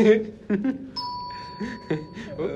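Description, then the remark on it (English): A single bell strikes and its clear, steady tone rings on for well over a second, sustaining beneath people talking. “Bells, man. Always ringing.”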